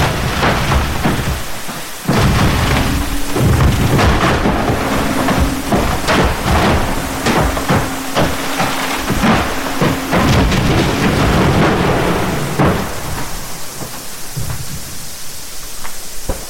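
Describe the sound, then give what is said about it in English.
A dense chorus of deep booms and thuds with sharp cracking bursts as refreezing ice shifts and groans from the mechanics within, with no surface sound, in steady, loud, rumbling layers, with no voices throughout. “So that this wonderful percussive chorus of booms and thuds and cracking as this was happening around me in the sort of sea of sound, when everything else was silent.”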